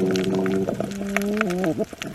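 Reef fish croaking in drawn-out, low tonal calls that hold steady, step up slightly, then bend downward near the end, over a constant crackle of scattered clicks and snaps.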